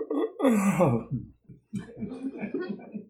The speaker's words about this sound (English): Is that a real yawn or a fake yawn? Just an ordinary yawn.